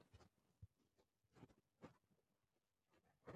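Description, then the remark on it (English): Soft, irregular rustling of bedding set up around the microphone, a handful of brief scratchy bursts with quiet gaps between them and a louder shuffle at the end. No one speaks. “Oh, dang, the rustling is back. That's my bad. I didn't set up my nest well this time.”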